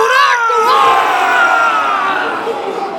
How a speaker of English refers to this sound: And now the tears and the weeping and the grief turn to Viking rage. Can you all roar with me? Come on!